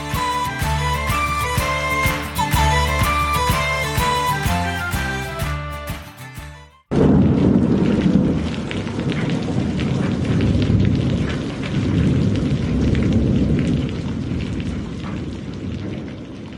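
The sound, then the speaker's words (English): A short musical passage ends abruptly, giving way to a loud, steady downpour of rain at night with deep thunder rumbling and rolling beneath it, with no voices. “It was a dark and stormy night, it really was, and I was raccoon hunting alone on the backside of our Wisconsin dairy farm.”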